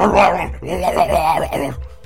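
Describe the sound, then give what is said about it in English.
A person's voice imitates a dog's barking, making a gurgling, throaty, bubbling growl-bark that wavers for about two seconds, fairly loud, before trailing off. “Well, after you throw the first one, he starts barking loudly. Fuck. It's like guttural, bubbling barking.”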